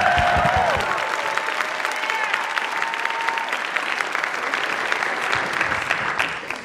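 An audience applauds steadily, a dense wash of clapping at fairly close range that holds for several seconds before tapering at the end. A faint tone fades out early on.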